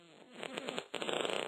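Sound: fart sound effect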